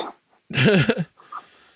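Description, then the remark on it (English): A dog that wants to be let in barks once, loud, a rough half-second yelp followed by quieter rustling. No one talks over it. “All right, the dog wants in.”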